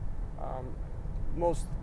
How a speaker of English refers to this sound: Nice loud truck.